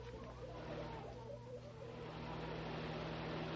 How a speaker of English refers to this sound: Hey, here comes a car.